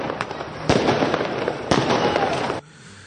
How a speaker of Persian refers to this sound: آره، یکی جشن خوشحالی مردم بعد از اخراج حکومت جنایتکار زن ستیز از کمیسیون مقام زن سازمان ملل در سقز. دارن آتش بازی میکنن. دارن با ماشین میرن، باز آتش بازیه.